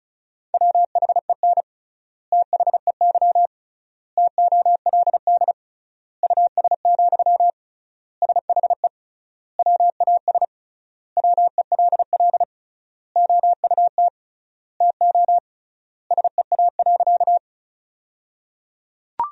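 Rapid Morse code beeps on a single steady mid-pitched tone, sent at about 35 words per minute in short bursts of dots and dashes separated by regular wide pauses, with no voices, sending sentences built from the top 400 words with triple word spacing.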